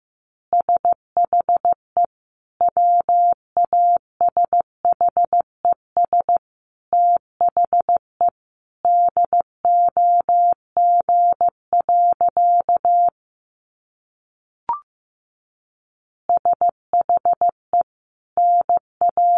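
Morse code beeps at 15 words per minute from a single steady, mid-high tone keyed into quick dots and longer dashes at a moderate pace. A pause with one short click falls near the end before the tapping resumes.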